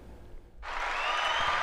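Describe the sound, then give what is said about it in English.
A burst of applause starts abruptly after a brief quiet moment, then continues as a dense, steady wash of many hands clapping, fairly loud. “Let's get the applause, applause, applause.”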